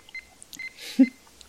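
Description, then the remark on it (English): Sparse, quiet electronic bleeps from a Nokia 3310 mobile phone as someone plays the Snake game, short high-pitched blips at irregular intervals, a soft hiss, then one lower, louder tone. “Yeah, if it's got Snake on it, it's at least a Nokia 3310.”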